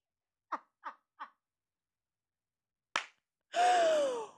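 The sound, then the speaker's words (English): Three quick soft thumps, a pause, then a single sharp bang like a door slamming shut, followed right away by a loud, drawn-out wavering cry. “Don't you slam my door.”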